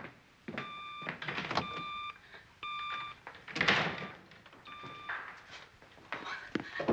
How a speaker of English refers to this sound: that beeping sound is beginning to disturb me.